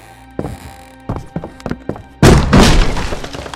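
Five dull wooden thuds land at an uneven pace as a doorknob is kicked, then a loud splintering crash bursts out as the doorknob breaks clean through the wooden door into the doorframe, followed by a second of rattling, crackling debris and flying wood splinters.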